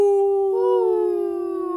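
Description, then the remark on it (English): A person imitates a wolf howl with one long, sustained, wavering tone that swells slightly midway and then slowly fades, loud with no other sounds around it. “This is Hiking Through Life, howling out. Ow!”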